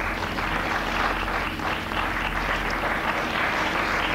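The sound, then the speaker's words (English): An audience at a talk applauds steadily, answering the question of who has seen one of these things themselves. It is a dense wash of many hands clapping at a constant loud level for a few seconds, with no voices standing out. “People applaud if you've seen one.”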